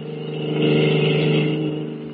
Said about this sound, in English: At the moment, they are speeding away from the naval base in a stolen car.